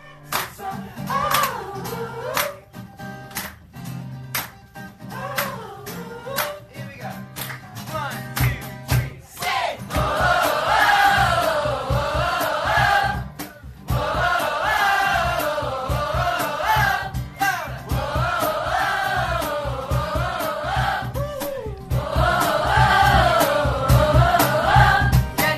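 A packed room of people sings along loudly and enthusiastically to a live song, with scattered clapping and rhythmic thumps early on, then a full, boisterous chorus of many voices.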